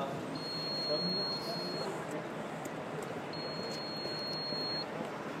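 A door intercom buzzer at the entrance to a doctor's office rings twice, each a steady high-pitched electronic tone lasting over a second, separated by a short pause, over constant street-like background noise.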